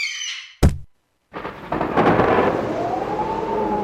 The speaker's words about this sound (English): Then a terrible storm comes along.